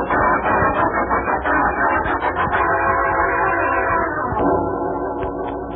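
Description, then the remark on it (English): The 11:43 train at Los Angeles Station rumbles steadily, with sustained horn-like tones and metallic rattling over a dense, loud wash of noise, no voices. “The message here says kidnappers, Los Angeles Station, 11:43.”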